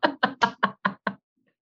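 Six quick, evenly spaced knocks on a door, each a solid, fairly loud rap, ending in silence. No voices are heard.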